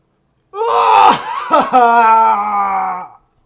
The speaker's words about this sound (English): And, you know, sometimes it's pretty relieving to just shout, get something off your chest, even though you're just shouting. It feels like you're getting something off your chest. So let's do that real quick.